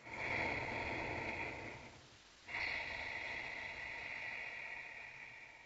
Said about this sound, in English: So this is I believe a yoga breath that is meant to, you're supposed to emulate the sound of the ocean in your breathing. And I thought that was such a perfect addition to this song.